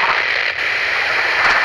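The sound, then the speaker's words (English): Loud, steady hiss of radio static interference on a police radio transmission fills the whole stretch, a dense crackling noise with a brief dip partway through, no voice coming through. “Say again, Lee. We've got interference.”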